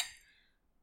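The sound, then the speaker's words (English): A single bright clink of glasses touching in a toast, fairly quiet, with a short ringing tone that fades away within about half a second. “Cheers. Cheers.”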